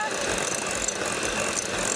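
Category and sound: household object, electric blender running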